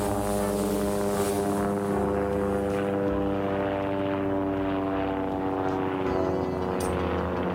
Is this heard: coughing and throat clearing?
no